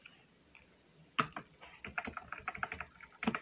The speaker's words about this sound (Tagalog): Kasi parang stiff ng keyboard ko. Kaya parang hirap mag-type.